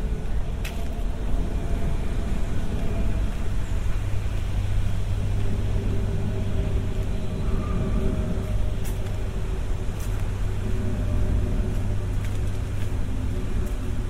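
A steady, low engine drone of a plane passing overhead, heard outdoors beside the River Lea, with a constant rumbling hum and faint outdoor background noise.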